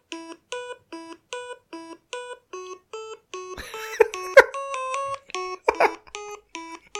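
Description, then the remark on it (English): Game Boy printer music plays as a bright, bleepy chiptune: a steady run of short square-wave notes at an even, brisk pace, moderately loud, with a few brief clicks and rustles partway through. “Can you hear this music? Music just for the Game Boy printer.”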